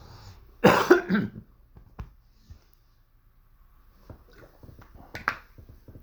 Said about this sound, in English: I'm going to do a throat clear, get some water, and we'll dive into it, friends.